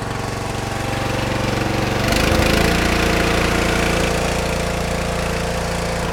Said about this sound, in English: Let's run the engine on up a little faster.